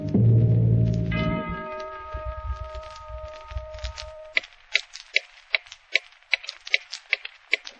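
A sustained ringing tone over a low rumble fades out, then a clock ticks steadily and crisply, close by, about a dozen even ticks with nothing else around them.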